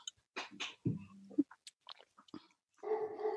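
A dog lets out several short, uneven barks and yelps, ending in a longer, drawn-out bark-like cry. No one speaks.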